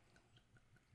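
Beer pours into a large pint glass with a steady run of soft, rhythmic glugs, faint, with no talking over it.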